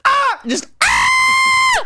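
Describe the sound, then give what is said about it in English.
A loud, high-pitched vocal shriek: a short, falling cry, a brief gap, then a long, piercing sustained screech that holds steady for about a second before cutting off. “It used to be, I used to have a different voice. Just a shriek.”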